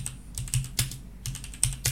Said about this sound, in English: Seth's aggressively typing right now. You could have just not said anything because it was going to edit the click-clack out.